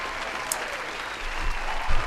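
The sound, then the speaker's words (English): Steady audience applause for the first winner of Name That Game for 2024, a dense wash of many hands clapping at a fairly even level, swelling slightly louder toward the end of the short burst. “Here's another round of applause for you for being the first winner of Name That Game for 2024.”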